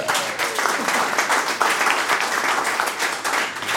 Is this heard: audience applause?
yes